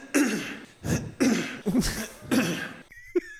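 A run of about five harsh, raspy throat-clearing coughs, loud, each burst following quickly on the last, then a brief quieter stretch with faint, thin tonal sounds.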